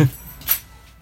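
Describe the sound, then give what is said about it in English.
A brief, bright metallic jingle of keys as they are handed over, one quick rattle midway through, preceded by a soft low thump and followed by quiet. “Can I have the keys at least?”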